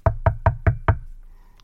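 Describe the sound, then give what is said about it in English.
Five firm, evenly spaced knocks on the wooden front door of Mick McCarthy's home, loud, followed by a brief quiet tail with faint room sound. “Let's knock him up and have a look round his house.”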